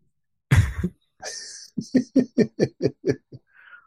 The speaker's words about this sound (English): He coughs, and we hear him beautifully, and he talks, and we can't hear him.